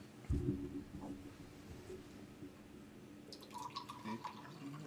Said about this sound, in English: Straight from the can into the glass. It does say you can as long as it's chilled. There we go.